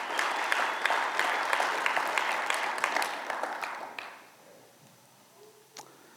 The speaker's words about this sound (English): This is the hope that we have. Amen. That's something to clap about.